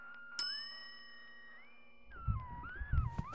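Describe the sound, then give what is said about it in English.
A single bright ding from a desk bell, struck once and ringing out as it fades, over a steady warbling tone, with low rumbling movement sounds coming in toward the end. “It looks like there's a bell on the desk.”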